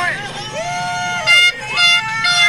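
Loud air horns blare in bursts over a noisy, cheering crowd at the C-class LCQ at Mammoth, with a couple of long bright blasts in the second half cutting through the shouting.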